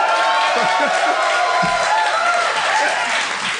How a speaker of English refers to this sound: That's the level we've been reduced to. They're cheering that we did one thing.